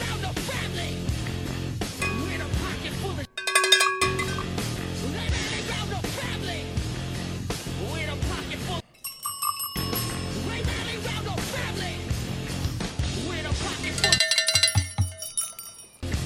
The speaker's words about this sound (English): Might as well do the drinking game, so I'm going to start. I'll probably hit a lot of bells today, I think.